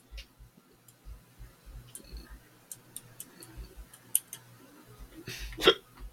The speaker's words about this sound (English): I get the hiccups, y'all.